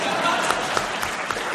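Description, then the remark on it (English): A crowd claps steadily in a dense, even wash of applause, with sharper individual claps popping out now and then; it's fairly loud and holds at one level throughout. “Some applause would work there.”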